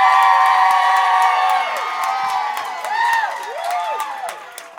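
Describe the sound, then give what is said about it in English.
A loud, sustained crowd roar of cheering from an audience voting for a comedian to reach the finals, with high rising-and-falling whoops and whistles cutting through and a few scattered claps, tapering slightly toward the end. “If you want to see Jane Hayes in the finals, make some noise.”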